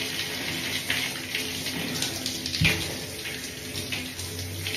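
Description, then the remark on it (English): Steady running water from a tap splashes continuously as soap is rinsed off a body, with the water pressure turned down a little. It is fairly loud, with a few brief louder splashes breaking the even flow. “I kind of turn off the pressure a little bit when I do this part. I'm just going to rinse it off.”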